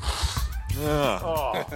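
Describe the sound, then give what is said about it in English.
A loud nose blow: a rough burst of breathy noise that turns into a wavering, honking nasal tone before trailing off. “He's going to blow his nose.”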